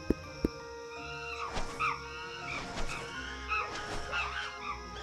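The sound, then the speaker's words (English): Monkey calls from a jungle sound effect played from an app on a tablet: a series of hooting, wavering cries rising and falling over a steady ambient bed, following two sharp knocks at the start. No one speaks. “There are monkeys in the trees.”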